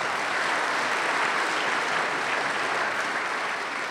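Steady audience applause for a presenter after a talk fills the whole stretch, a dense, even wash of many hands clapping at constant loudness with no voices standing out.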